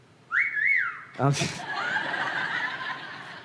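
A woman whistles a short, clear two-part call that rises and falls, used to call children in, then breaks off into a burst of snickering laughter, with a steady hiss of room noise continuing after.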